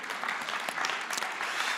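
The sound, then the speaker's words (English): A church audience claps steadily, a dense wash of many hands with scattered sharper claps poking through, sustained at an even level without any voices, applauding a church member who paid for every child to go to a kids' party. “And because the ticket, well, you can applaud that.”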